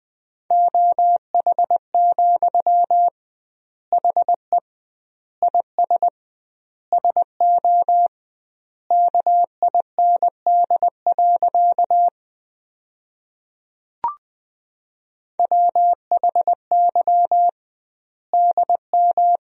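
Morse code beeps at about 20 words per minute sending practice sentences built from the top 500 words, with double word spacing: a single steady mid-pitched tone keyed into short dots and longer dashes, with wide pauses between word groups and no voices.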